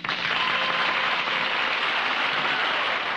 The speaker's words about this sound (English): The crowd just roared with approval. They wouldn't stop their applause.